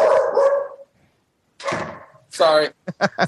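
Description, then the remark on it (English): Several dogs bark in loud bursts: a couple of drawn-out barks, a pause, then a yelping volley and three quick sharp barks at the end. “Hey, it wouldn't be right without a little guest appearance by the Dogs.”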